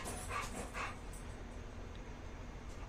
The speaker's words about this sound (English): And the dog's running around. No, that sounded like a dog panting. Well, yeah, because he heard a cat and he started running back and forth.